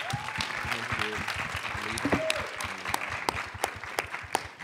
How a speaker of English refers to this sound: Panel, give them a round of applause, please.